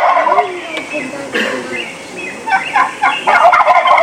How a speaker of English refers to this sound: So for that question before, the birds are still roosted. Obviously, you see them in the tree. The hens are calling, and the gobblers are pretty much gobbling at anything. You know, crows, the Tweety birds, the other hens, coyote howling.